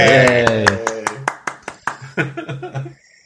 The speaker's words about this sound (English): Do I have a clap sound thing here? Maybe. Do you have a cheer? If not, here we go.